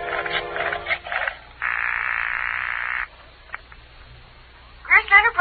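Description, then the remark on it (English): A telephone number is dialed from a phone booth: a quick series of short electronic tones, then a long steady tone and a couple of faint clicks before a voice begins speaking at the end. “I then headed for the nearest phone booth and, pausing only to inspect it for mines and booby traps, dialed the number of Grierson Enterprises.”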